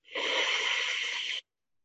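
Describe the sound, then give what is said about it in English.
A single long, hissing breath of cold air drawn in through the mouth over the tipped-back tongue to cool the body, fairly loud, lasting just over a second before cutting off into silence, with no talking. “So tipping the tongue back and the tip like this is very good for that, okay? And again, breathing in the cold, but you're going to exhale out the heat.”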